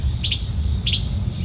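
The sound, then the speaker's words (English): A bird chirps in quick doubled notes, the bright paired calls repeating at a steady pace about every half second, clear over a low, constant background rumble. “This bird's being a butthead. Hey, keep it down.”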